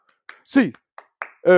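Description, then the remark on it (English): A handful of sharp, crisp claps from UCLA fans land in an uneven rhythm, a thankful clap counted off from 1 to 8, with loud voices calling out between and over them. “UCLA fans, a thankful A clap.”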